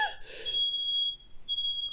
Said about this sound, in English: I think that's a smoke detector.